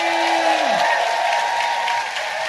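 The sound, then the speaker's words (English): A large audience applauds Fern Brady loudly and steadily throughout, a dense wash of clapping with some cheering mixed in, while a low tone slides downward and fades early on. “ladies and gentlemen, please give a massive round of applause to the incredible Fern Brady!”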